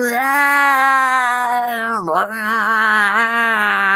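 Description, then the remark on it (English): A man imitates an angry tomcat with a loud, sustained, scratchy yowl lasting about four seconds. The pitch dips sharply once midway before the drawn-out screech resumes. “Like the nastiest male cat trying to face off against a territorial invader on the edge of its, you know, territory. Scratchy and loud, and everybody stops what they're doing and watches the guy.”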